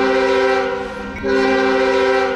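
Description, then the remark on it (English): A loud, sustained train horn blares a steady multi-tone chord, briefly dipping about halfway before sounding again at full strength over a low rail rumble, with no voices. “Finally in the news, it's our first sighting of the Lamar Jackson hype train coming into the station. Woot woot!”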